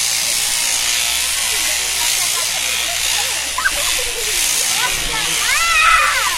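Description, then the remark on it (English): A steady, buzzing electric sheep-shearing handpiece runs throughout with a bright, hissy whir as a sheep is shorn, the handpiece rolled underneath the shoulder and down to the flank, its tone wavering slightly as it moves; short rising chirps and faint bleats cut through near the end. “Roll the handpiece underneath the shoulder.”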